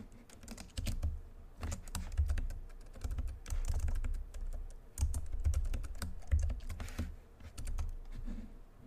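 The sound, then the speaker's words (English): Steady typing of a password on a computer keyboard, a quick run of crisp key clicks with soft thumps underneath, continuing for several seconds with no one speaking. “All right, I put the password in there.”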